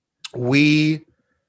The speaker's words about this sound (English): He's clearing his throat as I sip my coffee.